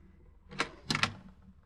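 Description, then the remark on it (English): A door is opened to answer a visitor: a sharp latch click followed by a quick pair of knocking clatters as it swings, then quiet. No one speaks. “Answer the door, will you”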